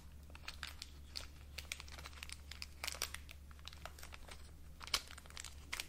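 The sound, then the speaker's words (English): Plastic wrapping tucked around a figure crinkles and crackles as the figure is unwrapped, an irregular stream of sharp, bright rustles with one louder snap near the end, over a steady low hum and no voices. “There's a bit of plastic just kind of like tucked up around her.”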